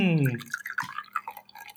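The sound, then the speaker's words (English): Boiling water pours from a teapot held in the hand, a quick burst of gurgling, trickling liquid with small bubbly splashes, following a brief vocal sound at the start. “I have boiling water in my hand.”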